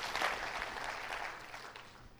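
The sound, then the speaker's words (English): A church audience claps hands to the Lord, celebrating their salvation, a dense, steady wash of many overlapping claps sustained throughout, at a fairly soft level. “Can we clap our hands to the Lord for our salvation?”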